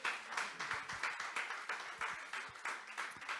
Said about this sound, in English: And if you know what I'm talking about here today, I want you to give God a mighty hand clap of praise.